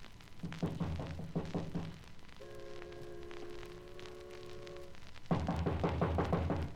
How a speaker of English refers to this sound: Just go up to the door, and I'll knock.